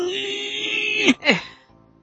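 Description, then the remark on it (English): During a tabletop role-playing game, a voice imitates the scream of a mimic monster forced to bite its own tongue: a loud, strained, sustained wail that holds steady for about a second, then breaks into two sharp, descending shrieks before fading out. “And then it screams even louder.”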